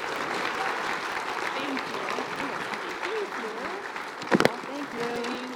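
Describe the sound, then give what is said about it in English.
An audience claps steadily for two volunteers who helped with the children's program, a dense wash of many hands that holds level throughout, with voices murmuring underneath and a brief louder burst near the end. “So let's give a big applause to them.”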